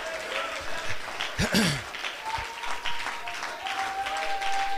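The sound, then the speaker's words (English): A crowd at a worship service claps steadily, a dense wash of many hands patting at once, while a faint sustained tone hums underneath and a brief louder burst rises partway through. “I'm going to clap my hands till my hands is red.”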